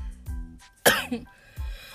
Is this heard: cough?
yes